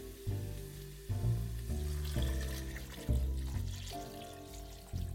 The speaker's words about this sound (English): And I'm gonna add water. It's gonna turn into this really lovely stew. Okay, so I'm gonna add about 1 quart of water here.